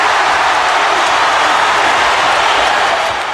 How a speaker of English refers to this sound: I love it because it's a reaction from the crowd as if like, oh, they talk so much shit for all these months. They don't want to mess with Mr. T in the ring when, you know, he's got no rules or anything.